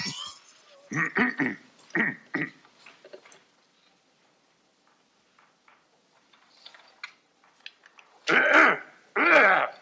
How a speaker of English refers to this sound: So Dan Aykroyd writes the answer and like underlines KGB for him. And so Chevy Chase coughs.